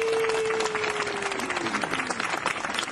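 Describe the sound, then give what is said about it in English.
A dense, steady round of crowd applause welcoming a guest on the Stupid Cancer Show radio program fills the whole moment at even loudness, with a faint descending tone gliding underneath partway through. “You're giving us a round of applause.”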